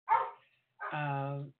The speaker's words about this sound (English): I hope that the dogs aren't being interfering too much. That should be over in a minute.